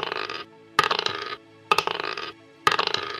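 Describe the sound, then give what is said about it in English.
Dice clatter across a hard surface in three quick bursts of rattling, each tumble settling briefly before the next roll, fairly loud with no talking. “Let me get my dice ready.”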